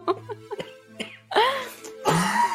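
Close, muffled throat sounds build up, then two harsh, raspy coughs burst out one after the other, loud and breathy, with no talking in between.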